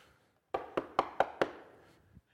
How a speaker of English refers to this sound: Hey, nothing's happening. I did that last week. Lord, I'm here. It's me. I'm still knocking, Lord.